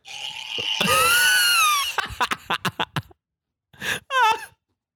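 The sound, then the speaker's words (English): A loud, sustained human scream with wavering harmonics rings out, then breaks into a rapid series of choppy gasping bursts, followed after a pause by two shorter shrieks. It's a voice imitating a terrified scream. “I scared the shit out of our tour manager by doing this scream.”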